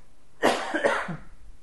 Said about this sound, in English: You can't just spontaneously cough.